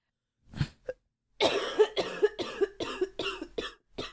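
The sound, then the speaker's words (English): A wet, chesty cough bringing up phlegm in a rapid fit of about eight hacking bursts, fairly loud, preceded by a couple of short throat-clearing sounds. “You should have seen the phlegm shit that I was coughing up the last 2 days.”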